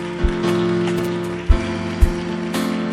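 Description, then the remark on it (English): An audience applauds in a dense, steady wash of clapping that holds for about three seconds, over a sustained low musical tone, with a few dull thumps breaking through. “Oh, clap for her. Clap for her.”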